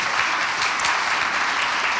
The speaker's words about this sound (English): So I think we should give them a round of applause, everybody.